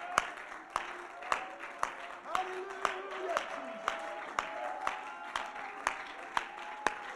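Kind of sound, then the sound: crowd, audience clapping and shouting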